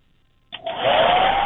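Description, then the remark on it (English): A hair dryer in a bathroom switches on abruptly and settles into a loud, steady whooshing roar with a faint rising motor whine, running continuously with no one speaking. “All right, turn the hairdryer on.”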